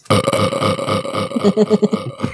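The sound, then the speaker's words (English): A long, loud, drawn-out burp drenched in echo, its rumbling tone wavering and pulsing for a couple of seconds before trailing off in a reverberant tail. “I can put reverb on my burps at any time.”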